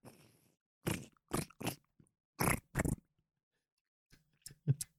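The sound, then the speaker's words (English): Several crunchy, crackling clicks in quick irregular bursts as stiff buttons are pressed and dials twisted, fairly loud, with short silent gaps and no talking. “the fucking buttons are so crunchy.”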